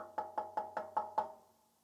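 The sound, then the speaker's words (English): Six quick, evenly spaced, firm knocks on a door by a driver who has parked his car after the last ride of his shift, landing in a steady rhythm before a short resonant fade into quiet. No voices are present. “So instead, I put the car in park and I walked up to the door and I knocked.”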